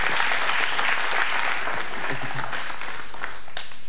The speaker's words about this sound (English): Come on, they've been here 10 years. Give them a better hand clap than that. Come on.